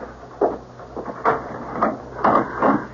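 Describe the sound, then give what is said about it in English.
A door is being opened, with a series of short clunks and rattling thumps as the latch and frame move, spread unevenly over a few seconds. “Better, I suppose, to answer the door.”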